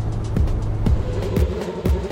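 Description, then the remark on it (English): A Lotus Elise sports car drives along as traffic opens up, with a steady engine drone punctuated by regular thumps about every half second, like tires rolling over road joints. “As we're enjoying this Lotus Elise, because the traffic's opened up.”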